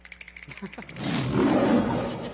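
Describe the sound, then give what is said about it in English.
A few short rhythmic grunts build quickly into a loud, sustained, rumbling roar that fills the rest of the moment, heard alone without any talking. “The roar of the father.”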